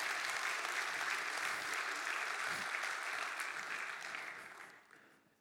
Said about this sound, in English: And we clap as a sign of praise and thanksgiving to God. And we stand in awe of him.